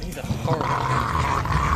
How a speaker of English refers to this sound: Horrible. Let me turn wolves down a bit.